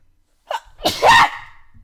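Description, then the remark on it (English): A single loud human sneeze: a quick sharp intake of breath followed by an explosive burst, then a brief fading exhale, with no talking. “I have to sneeze.”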